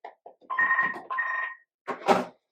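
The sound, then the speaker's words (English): A telephone rings in two steady electronic trills, the second cut short, followed by a brief burst of rustling noise before silence. “No one ever fucking phones us, except today.”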